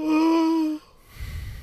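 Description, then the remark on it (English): A loud, drawn-out yawn: a steady voiced tone held for most of a second, then trailing off into a soft breathy exhale. No one talks over it. “If you yawn one more time, I'm going to come over there with my candy cane.”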